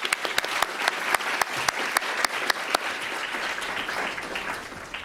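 Steady audience applause fills the room, many hands clapping at once with a few sharper claps standing out, moderately loud and fading slightly toward the end.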